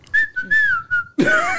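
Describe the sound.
Someone whistles a short run of four clear, steady notes, then ends with a louder, rougher, breathy burst of sound.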